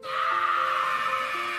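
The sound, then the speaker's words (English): A loud, sustained, high-pitched scream sound effect, played as a cue in a stage game, holds steady for about a second and a half with a harsh, strained tone, heard alone without any talking. “That's the noise you're going to hear that's going to wake him up.”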